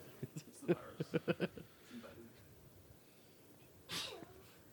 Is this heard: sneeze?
yes